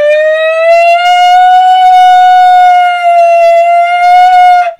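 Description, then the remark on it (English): A voice sings a fire truck siren imitation: one loud, sustained high-pitched wail that rises slightly, holds steady with a brief dip, and then cuts off abruptly after nearly five seconds. “Instead of doing na na na na na na na or whatever the scale is, I want you to sing like a fire truck. What does a fire truck sound like?”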